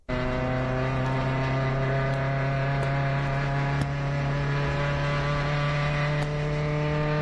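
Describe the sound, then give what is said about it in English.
A car engine, driven fast by a young child, drones loudly and steadily with a strong, even hum, broken by a brief jolt partway through as a hard gear shift clunks in. No voices. “He shifts right here, and it's a little hard of a shift, but.”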